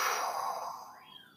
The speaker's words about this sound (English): Let's do another one. Here we go. Breathe in. Pause, blow out, move your hands.